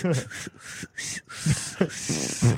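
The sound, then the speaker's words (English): A voice makes a comedic hissing whistle, imitating air escaping, in a few short breathy bursts with squeaky pitched tones, fairly loud. “It sounds more like air escaping than air being forced out.”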